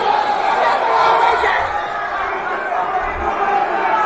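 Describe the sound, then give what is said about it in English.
A dense crowd of many people on Wall Street shouting and screaming at once, a loud, continuous roar of overlapping voices with no pauses, steady in level throughout. “So this is a bunch of people screaming in, like, the Wall Street.”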